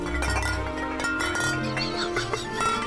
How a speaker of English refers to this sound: Then early one morning, just before dawn, I heard a sound like bells out on the lawn.